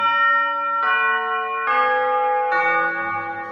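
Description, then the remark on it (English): Four clock chimes of the Westminster tune ring out one after another at an even pace, each bright, sustained tone stepping to a new pitch, loud with no voices. “So when you hear the Westminster chimes anywhere in the world, you are actually hearing, "I know that my Redeemer lives."”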